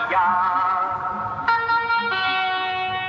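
A blaring loudspeaker advertisement call for Rodania watches from the Rodania promotional car that drives ahead of Belgian bike races: loud, buzzy sustained tones that shift to new, brighter notes twice, with a processed, echoing quality and no talking.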